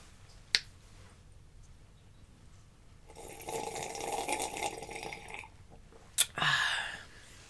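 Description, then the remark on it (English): Someone sips tea: a sharp click, then a long, airy slurp lasting a couple of seconds, another click and a shorter, louder slurp at the end. No one speaks. “Sip my tea.”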